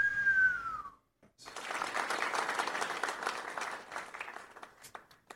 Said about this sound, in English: Anyway, giving y'all a big cheer.